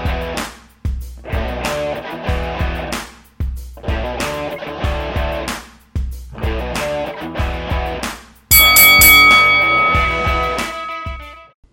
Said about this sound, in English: There is our opening bell.